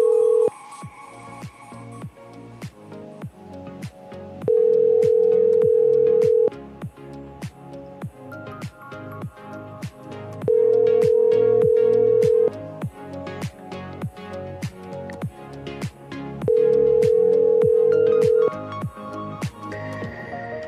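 An outgoing call to a cell phone rings out three times, each long steady ringback tone lasting about two seconds with even pauses between, heard over a constant beat of rhythmic background music.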